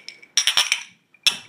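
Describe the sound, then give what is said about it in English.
Snifter glasses clinking together in a toast: a quick cluster of bright, ringing clinks, a brief pause, then one more sharp clink, fairly loud with no talking. “And let's get a round of cheers, boys. Here we go.”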